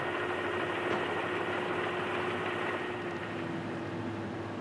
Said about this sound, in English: That flatbed truck is going up the ramp now. It's known as the last load. Also, it's known as the Stars and Stripes beam.